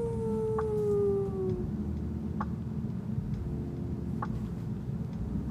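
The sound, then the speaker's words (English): A puppy in a standoff with a cat lets out a single drawn-out howl that slides downward in pitch and fades after a second or two, leaving a steady low background hum with a few faint ticks. “There's a little standoff right now between the cat and the dog. He doesn't know what to do.”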